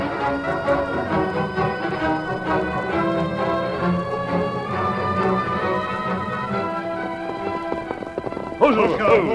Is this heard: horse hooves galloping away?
yes